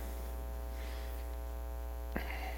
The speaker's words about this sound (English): If you're wondering what that is, yesterday morning Ryan's fridge decided to spurt out warm air instead of cold air. He fixed it, sort of.